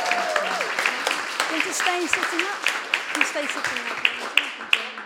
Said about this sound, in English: Can we have a rousing applause?